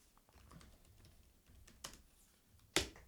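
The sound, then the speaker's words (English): Sparse computer keyboard typing as someone types the town name Yarrawonga into Google Maps: a handful of soft keystrokes, ending with one sharper, louder key press. No one speaks. “So I'm typing in Yarrawonga.”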